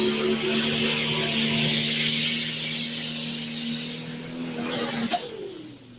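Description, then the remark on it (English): Taylor Van Beek's drag racing car with a big charger roars steadily on a test pass, with a loud, high whine climbing in pitch. Near the end the engine coughs and abruptly breaks off, its tone dropping sharply. No one speaks. “Just coughed a little bit. Got on top of that big charger.”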